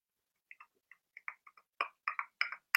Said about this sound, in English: Like the countdown clock.